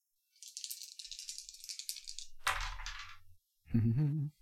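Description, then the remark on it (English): Dice rattle rapidly in a cupped hand for about two seconds, then tumble onto a table with a short clatter and thud, followed by a brief vocal exclamation. “So I'm going to pass the dice over to ….”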